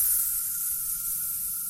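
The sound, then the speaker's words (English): A steady hiss of bug spray from an aerosol can, a bright, even burst of pressurized mist lasting nearly two seconds with no pauses or voices. “It's the bug spray.”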